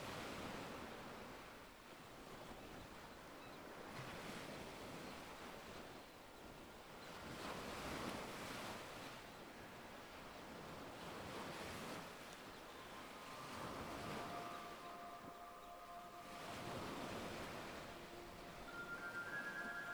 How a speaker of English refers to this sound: And the sound of the waves in your ears.